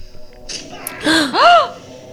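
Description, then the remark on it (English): Two sharp, breathy gasps, the second louder with a rising-then-falling voiced pitch, preceded by a faint airy intake; no words are spoken. “Gasping indeed!”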